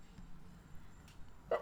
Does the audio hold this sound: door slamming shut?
no